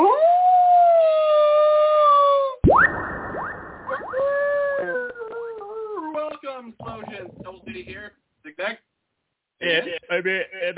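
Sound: person imitating a howl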